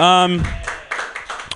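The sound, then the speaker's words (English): A brief voiced sound is followed by scattered, uneven claps from a comedy show audience after a comic's set, a handful of sharp bursts spread out rather than building into full applause. “Guys, you can clap if you want.”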